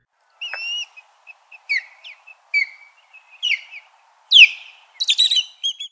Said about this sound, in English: A call you may mix it up with is that of the osprey, but the osprey has a lot more single note calls and a slower tempo. Here's an osprey.